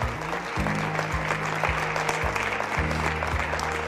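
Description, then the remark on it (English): An audience at a church service claps their hands together to thank the Lord, in a dense, steady burst of applause, with low organ-like tones sustaining underneath throughout. “Come on, clap your hand.”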